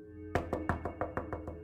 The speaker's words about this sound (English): A loud knock on the front door suddenly brought Carla's focus back to the party.